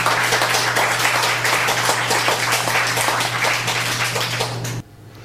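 Steady audience applause for a reader at the And the Journey Continues monthly open mic, many hands clapping densely and loud, continuing for several seconds before cutting off abruptly near the end, with a low steady hum underneath.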